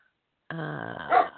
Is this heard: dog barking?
yes